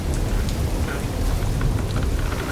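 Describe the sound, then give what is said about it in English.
Heavy rain from a hurricane, likely Category 5, pours steadily in a dense, unbroken roar, with a deep low rumble of storm and thunder underneath and no voices. “So, we'll say our story of black cowboys begins with a hurricane.”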